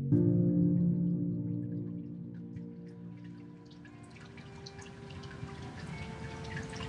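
Water trickles and drips steadily from a small decorative waterfall in the corner of a therapist's waiting room, growing a little busier toward the end, with soft sustained piped music humming beneath it. No one speaks.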